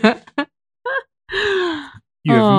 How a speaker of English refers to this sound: Okay, we're yawning.